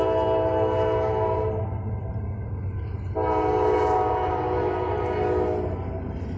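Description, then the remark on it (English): A loud train horn blares in sustained blasts, briefly cutting out and resuming, over the deep steady rumble of a train rolling by at a truck stop. “And even a train at a truck stop, it seems like.”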